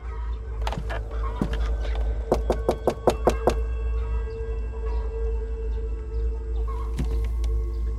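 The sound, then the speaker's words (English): A quick run of about six evenly spaced knocks on a wooden door on a farm after 7 a.m. The knocks are crisp, with a few scattered taps before them and a steady low hum and faint fowl sounds behind. “It was time to go knock on the door.”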